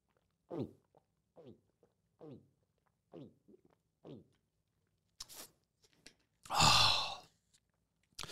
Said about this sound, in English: Drinking's always better when you make that gulping sound. I don't know why, but just a... sounds like a baby crocodile looking for its mother.